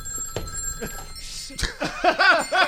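A telephone rings with a warbling, repeating electronic tone that grows louder toward the end, preceded by a few soft knocks and a sharp clatter.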